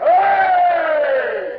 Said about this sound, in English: And three cheers for the king. Now, all together now. Hip, hip, hip. Hooray!